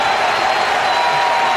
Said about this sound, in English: Their entire team is out on the edge of the grass, giving Zimmerman an ovation. He's saluting the crowd as he's being taken out of the game. He's patting his chest, looking to all corners of Nationals Park.